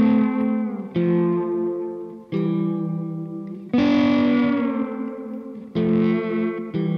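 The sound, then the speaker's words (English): Six sustained instrument chords ring out at an unhurried pace, each blooming and fading into a wash of heavy added reverb and effects, loud with no talking. “Like I did a tune the other day where it was just like those kind of chords, and I was just, you know, you put some extra like reverb and stuff, and it was just...”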